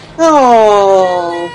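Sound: cat meowing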